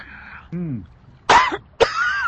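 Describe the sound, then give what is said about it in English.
A voice imitates a fit of coughing: a strained, wavering groan followed by two harsh, loud coughs, each a sudden rasping burst trailing into a hoarse wheeze. “literally that, the coughing.”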